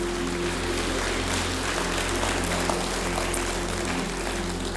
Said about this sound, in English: Come on, the rest of us, let's give these people a great clap of encouragement and appreciation.